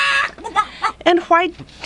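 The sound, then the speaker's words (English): A person's voice imitates a clucking chicken with a string of short, bright, squawking bursts in an uneven rhythm, fairly loud, with no real talk. “You do a very good chicken.”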